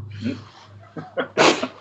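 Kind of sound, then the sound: human body sound, sneeze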